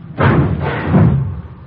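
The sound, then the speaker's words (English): A heavy garage door swings open on a chilly day, a rumbling clatter with two dull bangs about a second apart, then fading out. No one speaks. “Watch the door”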